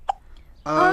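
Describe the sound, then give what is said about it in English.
A person imitates a baby's hiccup with a single sharp, voiced "hic", a short pause, then a louder drawn-out vocal sound close to the microphone. “And then Baby's hiccups came back.”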